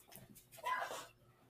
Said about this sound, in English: I wonder if she can hear Lilith barking.